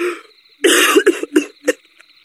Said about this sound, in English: baby, are you coughing?